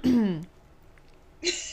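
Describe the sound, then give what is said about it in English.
A single short, voiced throat clearing, dropping in pitch, followed by a brief quiet pause before someone begins to speak. “I just clear my throat.”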